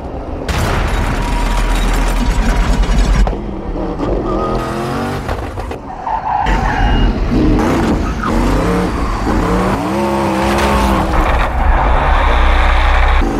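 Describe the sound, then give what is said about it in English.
A loud twin-turbo car engine revs hard and repeatedly slams against its rev limiter, the pitch rising, stuttering and dropping in quick bursts with brief pauses between pulls. “Maybe we'll call this section Name That Rev Limiter.”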